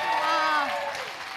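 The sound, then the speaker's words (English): Audience applause, a steady wash of clapping that fades slightly over about a second and a half, with a voice calling out over it. “Everyone, clap it out.”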